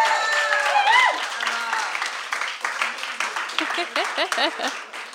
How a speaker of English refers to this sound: Can we give her another round of applause, please?